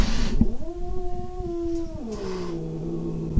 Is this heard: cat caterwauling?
yes